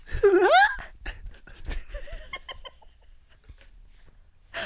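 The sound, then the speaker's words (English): A voice does an impression of another person's laugh, a high, warbling, bird-like laugh: a loud squawking burst at the start followed by softer breathy giggles and chuckles that trail off. “You want me to try to do an impression of your laugh?”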